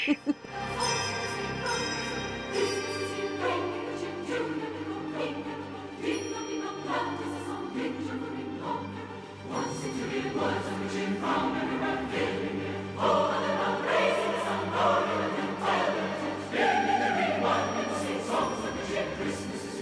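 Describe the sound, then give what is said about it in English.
An orchestral recording of the traditional Christmas carol Carol of the Bells by Mykola Leontovich, with chiming bell-like tones over a steady low bass drone, building in loudness and density as strings and brass swell; no one speaks. “Well, let's bring this on home with my last pick, which was Carol of the Bells.”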